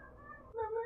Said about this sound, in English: And speaking of, my Tuukka is at the door, if you'll excuse me. Uh-oh. Goddamn cat, y'all. Pretty kitty.